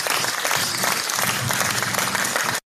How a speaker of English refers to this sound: Thanks for the sweet claps.